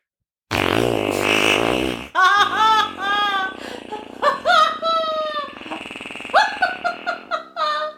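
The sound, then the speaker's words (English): Someone blows loud mouth-made fart noises: one long, buzzing raspberry followed by a rapid string of shorter, squeaky sputters that rise and fall in pitch, with no talking. “I'm very good at fart noises.”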